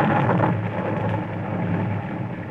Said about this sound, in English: Storming outside, violent and beautiful. I sat at the window of my bedroom, fascinated by the fury of the wind and the rain.